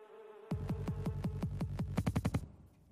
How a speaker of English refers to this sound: Wow, there it is, our commercial bumper. Boom.